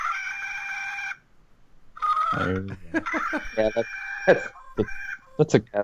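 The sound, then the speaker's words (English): A loud, drawn-out Peter Pan-style rooster crow rings out, then after a short pause comes a longer burst of choppy, warbling crowing with quick clucking breaks, fairly loud. “It's Peter Pan crow.”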